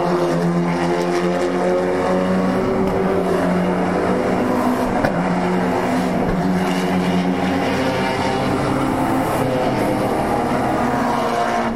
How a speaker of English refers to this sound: Top eight cars are Evos, followed by the two BMWs, hotly pursued by the black Sportswagen. Yeah. With the bimodal exhaust.